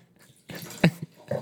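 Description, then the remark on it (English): Wine splashes and trickles into a glass for about a second, fairly quiet, with a brief clink partway through and no voices. “Can you pour my glass now?”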